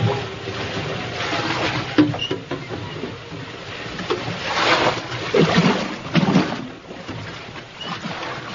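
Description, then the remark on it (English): A stormy sea on a sailing voyage churns with a dense, steady roar of heavy rain as waves surge and crash loudly in several swelling bursts, with shifting wind mixed in. No one speaks. “The sea rose on its haunches, and it rained as I've never seen rain before.”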